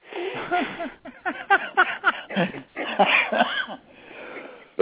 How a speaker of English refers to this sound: Don't make me laugh. Makes me cough, too.